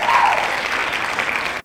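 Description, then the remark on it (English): Applause from a crowd, a dense, steady patter of many hands clapping at once, loud and sustained for a moment before cutting off abruptly. “Hand claps.”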